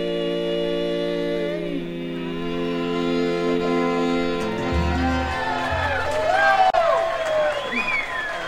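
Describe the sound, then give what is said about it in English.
A sustained musical chord fades into a large studio audience clapping and cheering after a band's first set, with rising whoops over a steady wash of applause that carries on to the end. “Yeah, round of applause here in the studio. There's so many people here.”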